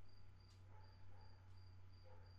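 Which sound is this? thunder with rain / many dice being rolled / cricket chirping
cricket chirping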